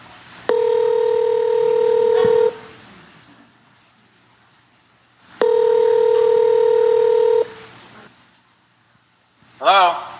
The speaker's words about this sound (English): So we're going to try his cell phone first. If he doesn't answer that, we're actually going to call his home as well. So I have both those numbers.